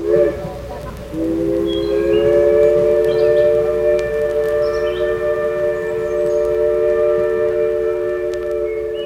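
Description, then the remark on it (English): A steam engine's whistle blows a long, steady, rich chord of layered tones for several seconds without wavering, loud, over a low rumbling background. “And that was a steam engine.”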